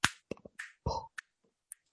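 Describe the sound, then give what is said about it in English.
A quick, irregular run of sharp finger snaps mixed with wet clicks and smacking mouth and tongue noises, including a short buzzy vocal pop, then a final crisp click. “I said, you know, the human organic quality of your voice telling jokes might go well with the human organic quality of my finger snaps and lips and tongue noises like this.”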